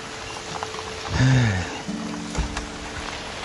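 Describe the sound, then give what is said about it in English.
Steady rain hisses throughout at moderate loudness, with scattered soft patters and a low droning hum rising briefly in the middle, no voices. “It's raining right now.”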